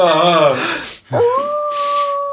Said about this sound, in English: What was that? Oh, God, what is that? Well, we are in a dog kennel. I'm assuming it's a dog.